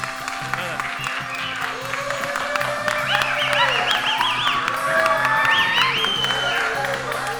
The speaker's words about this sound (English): Can I get an applause?